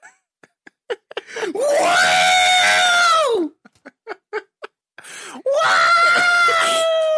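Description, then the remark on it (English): A human voice imitates the shrill electronic scream of an R2 astromech droid in two long, loud, wavering bursts, each introduced by quick clicking mouth noises and short breathy sounds. “That's our R2 scream.”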